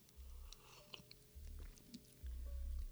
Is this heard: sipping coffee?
yes